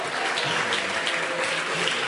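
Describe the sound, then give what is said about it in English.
A church audience claps steadily while giving thanks to Jesus, a dense wash of overlapping hand claps at an even level for a couple of seconds, with faint murmuring underneath. “It's okay to clap your hands, but thanksgiving is given with the mouth, not with the hands.”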